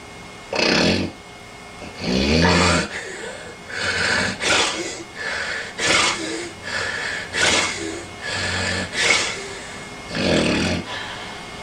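Loud snoring: a quick, uneven run of rough, rattling snorts and breaths, one after another, with no talking.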